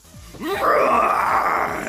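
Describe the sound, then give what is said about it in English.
A human voice lets out a long, loud, animal-like roar that rises in pitch and holds as a strained, throaty bellow for over a second, with no other talking. “He actually roars, and it's almost like an animal.”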